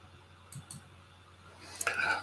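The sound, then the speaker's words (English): A couple of soft clicks, then a brief, bright burst of coins clinking and jingling together near the end, moderately loud, with no one talking. “offsetting the decline in the use of coins. Of course, these.”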